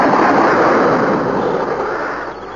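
A firing squad's rifle volley erupts as one loud crack that spreads into a harsh, hissing roar, fading gradually over a couple of seconds with no voices.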